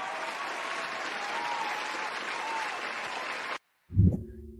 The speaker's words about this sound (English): And I'm going to take my round of applause for DJ Moore.